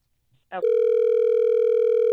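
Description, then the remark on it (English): A brief click as a phone line is picked up, then a steady, loud telephone line tone hums on continuously, with no voices, as the Miguel Show on Hot 101.5 radio places a call. “Let's try to get him on the phone to see what happened and why you were blown off.”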